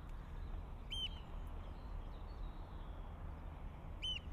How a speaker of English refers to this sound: That's an oyster catcher going by.